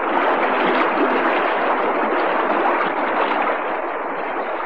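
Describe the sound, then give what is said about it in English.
Inside a submarine, a gush of water after rending metal gives way to a loud, steady rush of hissing as air is pumped in, a dense continuous wash of noise that never lets up or changes much in strength. No voices. “Suddenly, as I drove my aching, oxygen-starved body past the now prone form of the depth controller, there came a sound of rending metal, a gush of water which was instantly replaced by a loud hissing.”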